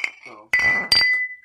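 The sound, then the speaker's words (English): Glass bottles clink together in a toast in two sharp strikes, each leaving a bright ringing tone that lingers and fades, with faint voices just beforehand. “Cheers. Grab your bottle. Grab your bottles.”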